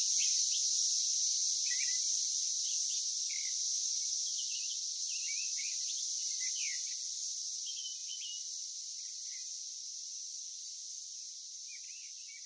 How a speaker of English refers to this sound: Perhaps then our war wasn't so much against cicada killers, but a fight for cicadas, for their cacophonic prattle that I'd known every summer since birth, a battle against time, against growing up, for things to stay the same, for ceaseless summer.